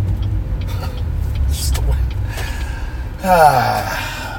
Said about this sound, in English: It's just traffic, you know, driving brings out the worst in me.